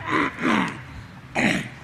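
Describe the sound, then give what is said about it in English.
A speaker coughs and clears his throat in the middle of a sermon, having forgotten his cough drops: two quick rough bursts, a short pause, then a third harsh hack, with no talking. “I forgot to take my cough drops this morning.”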